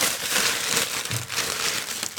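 Wrapping paper on a gift being torn open and crumpled, a continuous loud crinkly rustle with a few sharper rips, ending in a final burst of tearing.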